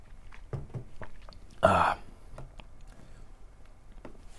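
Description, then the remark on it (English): Someone sips and swallows water: a few soft mouth clicks, then one loud, short gulping slurp, followed by faint smacking sounds fading out. No talking. “I'm going to get a sip of water here.”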